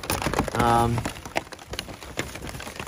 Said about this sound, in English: It's raining pretty heavy out there, and saw a little bit of lightning, so decided against walking out in the middle of an open meadow with lightning.